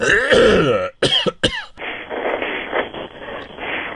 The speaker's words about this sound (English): Let me blow my nose real quick.